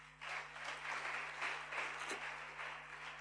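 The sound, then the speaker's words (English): A crowd applauds steadily as a clap offering to Jesus, many hands clapping in a dense, continuous patter that holds at an even level throughout, with no voices standing out. “Can we give Jesus a clap offering?”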